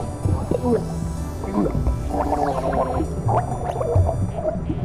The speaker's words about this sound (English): What's that, dear? I can't understand you with all that water in your mouth. Computer, end the drowning sequence.